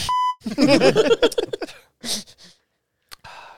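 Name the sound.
censor bleep tone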